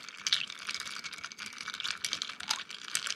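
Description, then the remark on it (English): Ice clinks and rattles steadily as a cocktail made with Regan's orange bitters and Campari is stirred in a mixing glass, a quick, continuous run of small bright clicks, with no voices. “This is a stirred cocktail, so into the mixing vessel, adding ice. And we're going to give this a good stir.”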